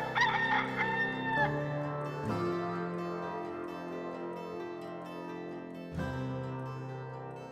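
A rooster crows once, loud, in a short warbling call at the start, followed by sustained musical chords that ring out and fade with a fresh chord near the end.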